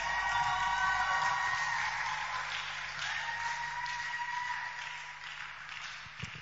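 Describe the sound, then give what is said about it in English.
A large crowd claps and cheers for Jesus, with scattered whoops and shouts rising over dense applause that holds strong before gradually thinning toward the end. “Clap for Jesus.”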